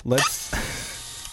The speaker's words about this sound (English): Let's get out the saw. Let's get some power tools going here. And let's... whoops. I think that's a power tool.